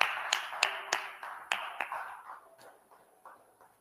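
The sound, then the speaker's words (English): A crowd claps for God, a dense wash of hand claps with some sharp louder claps standing out, gradually thinning and fading over a few seconds. No one speaks. “Give God a hand clap if you can.”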